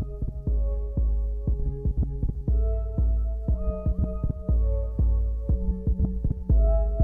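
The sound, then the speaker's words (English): An instrumental trance track plays alone, with a steady, pounding kick drum over a booming bass and sustained synth chords that step between notes; loud and continuous, with no voices. “Trance instrumental.”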